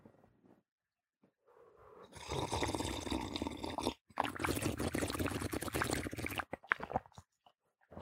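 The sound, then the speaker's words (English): Water is poured in two steady, splashy bursts of about two seconds each, separated by a brief pause, followed by a few faint sputters and clinks. “Let me get a little bit of water.”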